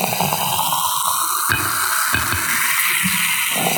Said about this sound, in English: That's bubbles, people. That's bubbles. Want more bubbles? It sounds a little bubbly. Yeah. So yeah. So now we're each pouring a glass. Oh, I just spilled a little on me.